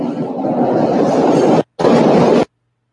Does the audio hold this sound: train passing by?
yes